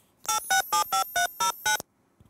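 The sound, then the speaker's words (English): A rapid string of seven loud, evenly spaced DTMF beeps, each a steady dual-tone burst of shifting pitch, dialing a phone number with no one talking. “I've actually done projects before where I've played dual tone multifunction, so two tones at once.”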